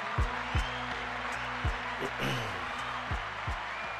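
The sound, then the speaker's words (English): A dense, steady wash of applause celebrating a fantasy football league win runs through the whole clip, layered over a rhythmic thumping beat of low drum hits landing about twice a second. “Clap it up one more time.”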